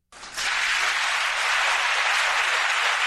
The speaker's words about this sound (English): I want you to listen to the Democrats in the audience cheering Bernie Sanders.